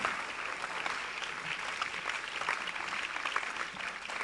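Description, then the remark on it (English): A crowd claps steadily and continuously, a dense wash of many hands at a moderate, even loudness, with no voices standing out above it. “Oh, keep on clapping, keep on clapping, keep on clapping, keep on clapping.”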